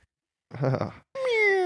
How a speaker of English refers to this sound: And that is Garfield. Meow.